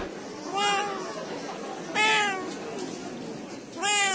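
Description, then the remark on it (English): A cat meows three times, each cry drawn out and wavering, spaced a second or two apart, over a steady background murmur, as the cat is brought out for judging at a cat show hosted by Hamilton Cat Club in New Zealand in 2021. “Just judging at the moment, so they're going to bring the cat out.”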